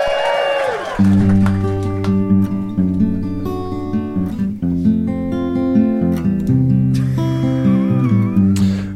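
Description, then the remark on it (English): The 100th quickfire round jingle, a short musical jingle: a sliding, meow-like cry opens it, then a loud, steady bed of sustained tones and chords plays for about eight seconds with bright notes flickering on top. “So let's give them all a chance to catch their breath as we listen to the 100th ever quickfire round jingle.”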